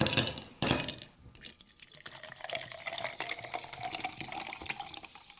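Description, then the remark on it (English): Two short bursts of fizz give way to a steady pour of sparkling mineral water into a glass, its pitch rising as it fills, with a fine crackling of bubbles. “I have sparkling mineral water.”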